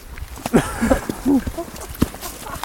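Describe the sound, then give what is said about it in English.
A person's voice imitates a horse with a few short, wavering whinny-like bursts and some sharp tongue clicks, fairly loud over slight background noise. “He's pretending to be a horse.”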